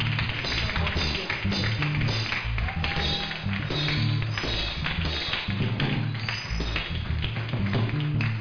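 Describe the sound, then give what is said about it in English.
An audience claps unevenly and half-heartedly, scattered hand claps blending into a steady wash over a low, sustained musical backing that fills the whole stretch. “Your clapping is weak.”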